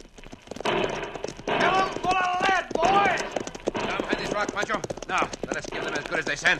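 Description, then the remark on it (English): Horses ridden by a gang of men gallop back through a draw in a rapid, steady clatter of hooves, loud, while the men shout over the drumming hoofbeats, with a few sharp cracks of six-guns firing mixed in. “Trip has ordered his men to ride back through the draw with six guns blazing.”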